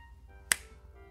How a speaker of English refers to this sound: I'm going to snap my fingers, and I'm going to rest on my porch and watch the sunrise.